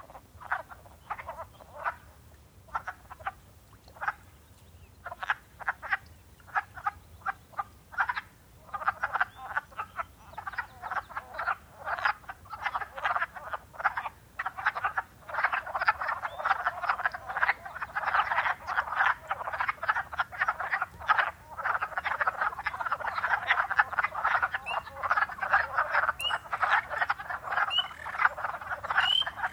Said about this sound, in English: The wood frogs were first. Their call is that nyuk, nyuk, nyuk. That might sound like a group of conspiratorial ducks hushedly quacking.